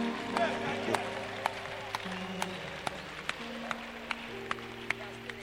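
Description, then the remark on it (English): Sparse, scattered handclaps from a small audience, irregular sharp claps over a steady low hum and murmur, fairly quiet. “So you people should be clapping.”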